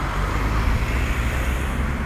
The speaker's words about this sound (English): I just saw a van pull out in front of a car on a roundabout, nearly crashed.